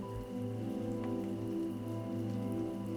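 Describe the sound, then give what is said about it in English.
Soft, steady raindrops patter continuously on a surface, a gentle even wash of rain with faint low tones underneath and no voices. “As your body melts deeper into your bed, see if you can notice the soft sounds of raindrops in the background.”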